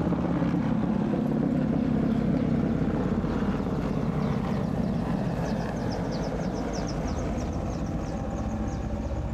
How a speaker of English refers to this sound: Oh God, one more, sorry. Your children are right. There are 4 helicopters.